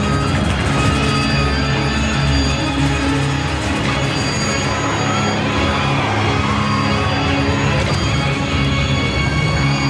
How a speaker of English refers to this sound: The Airbus hits hard at high speed. The tires have blown!